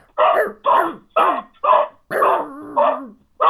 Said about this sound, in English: For those of you that don't, this is why you don't have a dog. Yep, there it is.